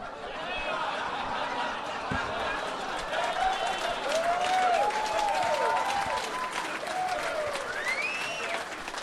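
A crowd applauds steadily for several seconds, dense clapping mixed with scattered whoops and cheers rising and falling over the noise, with some laughter.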